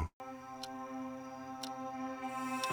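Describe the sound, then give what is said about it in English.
A clock ticks steadily, three sharp clicks spaced about a second apart, over a low sustained droning tone that hums underneath. “The clock is ticking.”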